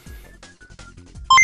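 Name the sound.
computer beeping sound effect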